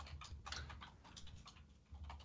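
Rapid, continuous clatter of keys on a computer keyboard as a man types furiously, dense irregular clicks typed quickly, with a low hum underneath and no voices.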